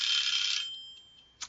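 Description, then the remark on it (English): A timer goes off: a bright electronic ringing tone sounds loudly for about half a second, then fades out with a few fainter pulses, followed by one short sharp beep near the end. “that was the timer. Our timer.”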